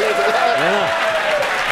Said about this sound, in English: Hold on. Round of applause.